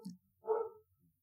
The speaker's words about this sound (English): My dog is barking like crazy. Yeah, he's upset about all the consumers.